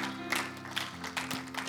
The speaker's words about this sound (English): Give the Lord a hand clap of praise before you're seated.